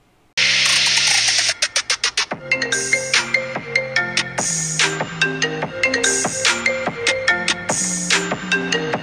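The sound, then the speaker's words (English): A loud electronic phone ringtone for an incoming call plays a bright, bouncy melody of rapid synthesized notes over a steady beat, continuing for several seconds with no one speaking. “I have a phone call coming in.”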